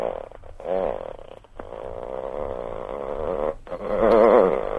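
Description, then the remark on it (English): A voice imitates a chainsaw with a continuous, throaty buzzing growl that revs up and down in pitch, pausing briefly twice before a final, louder rev. “Is it a chainsaw? Yeah. Oh, well, they've got that one.”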